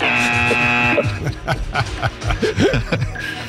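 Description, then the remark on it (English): A harsh, steady quiz buzzer blares for about a second with a rich, buzzy tone, then cuts off into people chuckling and laughing over low background noise. “Then I'll have to buzz you.”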